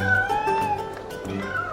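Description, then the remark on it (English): Several cats being juggled by a man in the town of Baldur's Gate meow in overlapping, drawn-out cries that rise and fall without pause, fairly loud, over a faint background hum. “You see that guy over there? He's juggling cats.”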